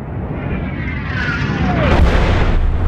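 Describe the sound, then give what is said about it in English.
A meteorite streaks down with a falling whistle over a constant low rumble, then slams into snowy ground in a loud, booming impact explosion that rolls on without fading, leaving steam rising from the impact site. “As the steam rises from the impact site of the meteorite, a solitary pair of figures make their way across the otherwise empty tracks of endless snow.”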